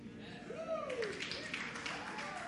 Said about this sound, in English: Thank God somebody clapped, because that would have been awkward.